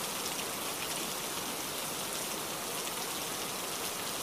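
Steady rain falls without pause, a dense hiss spread across the highs with a soft pattering texture of countless drops. No voices, just an even, unbroken downpour throughout.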